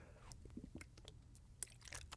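Quiet sips of Smart Water bottled water: a scattering of small wet mouth clicks and a soft gulp over faint room noise, with no one talking.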